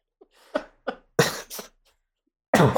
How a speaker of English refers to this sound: Laughing, so I'm coughing.